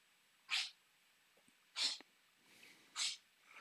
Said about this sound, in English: No, she's still coughing, but she's running around, her tail's wagging, and she looks all excited. So I think she just needs to go outside and cough it up.